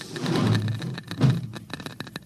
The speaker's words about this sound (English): Oh, shut off that Geiger counter.